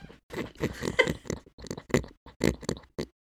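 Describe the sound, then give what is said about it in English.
A person makes close-up pig noises into the microphone, a run of snorting grunts and oinks in quick bursts with brief pauses between them. “I'm just gonna get up right close up on the mic and do my pig noise for you.”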